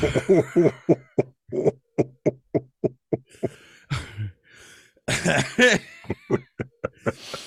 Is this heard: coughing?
yes